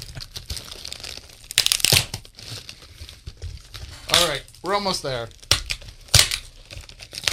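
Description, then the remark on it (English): Tape is ripped off a package in several harsh, crackly bursts, with crinkling in between. A man speaks briefly partway through, and the tearing resumes after him. “It's a lot of tape”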